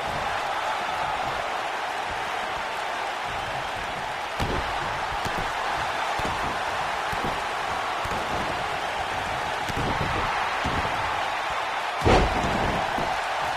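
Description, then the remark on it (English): In a wrestling match, Edge slams Jinder Mahal onto the ring mat with one loud, heavy thud near the end, following a fainter thump earlier, all over a steady roar of crowd noise. “Slams him now.”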